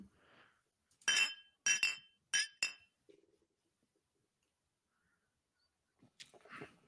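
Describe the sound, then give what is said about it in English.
Glasses of mezcal clink together in a quick toast, four bright ringing chimes in close succession, followed by quiet and a soft rustle near the end. “Like, I can just smell it in the glass already.”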